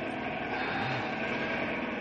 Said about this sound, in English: Hey, here comes the helicopter again. There's the spotlight.